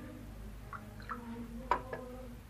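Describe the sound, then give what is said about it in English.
A woman pours tea into a cup: it trickles quietly with soft liquid gurgles and a brief rising splash near the end, over a low steady background hum. “A woman pouring tea.”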